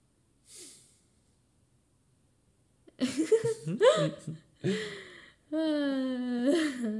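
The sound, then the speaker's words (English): A voice imitates loud snoring: a brief breathy intake, a pause, then a run of rough, snorting, gurgling snores and a drawn-out nasal rumble, loud, with no words spoken. “I snore very loud.”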